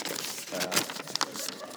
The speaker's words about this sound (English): Let me try and make this. It's going to sound good on the old podcast, just a bit of ruffling of paper.